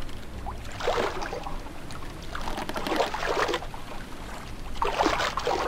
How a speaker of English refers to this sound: Let's paddle over there.